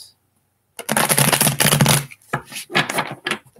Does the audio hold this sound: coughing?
no